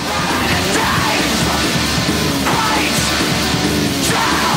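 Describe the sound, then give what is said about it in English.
Harsh, screamed vocals roar over a loud, dense band, the shouting sustained and aggressive throughout with no break in the wall of sound. “Some of the angriest vocals I've ever heard.”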